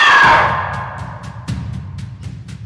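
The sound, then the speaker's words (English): A loud, harsh monstrous shriek of a very large undead phoenix made of ash and decay bursts out at the start and fades within half a second, leaving a low rumbling drone with faint rhythmic clicks underneath. “and they take on the shape of a phoenix, so what you know now to be a phoenix, a very, very large bird, but it looks wrong. It looks like it is made of death.”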